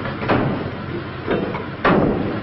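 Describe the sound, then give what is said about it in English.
The back doors of a Woodbury Crematorium van slam shut in quick succession after a gurney is loaded, three solid metallic thuds over a steady background hum, the last one loudest. “They close the doors, and one of the officers joins the assistant in the front.”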